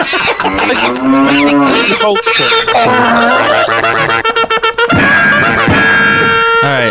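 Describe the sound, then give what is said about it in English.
A loud, drawn-out cow-like moo with wavering pitch, then a busy burst of bright, brassy tones and clatter, like a cavalry charge fanfare, all loud with no talking. “It was like a cow mooing, and then there was a cavalry charge.”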